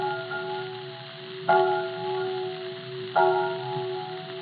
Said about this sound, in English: they'd invested in a bell, and I'm sorry to say, it was far from being what I might term a pleasant-sounding bell. In fact, well, I'm inclined to think it was a trifle cracked.